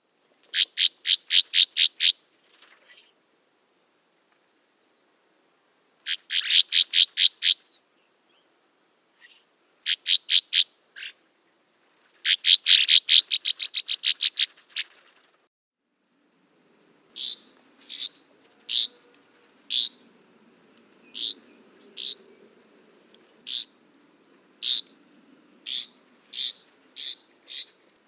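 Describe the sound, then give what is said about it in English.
Northern rough-winged swallow calls: buzzy, rapid bursts of rasping notes in short series, then a run of evenly spaced single chirps, moderately loud with no talking and a faint low murmur behind. “Next is the Northern Rough Wing, or Northern X-Wing, with their laser guns.”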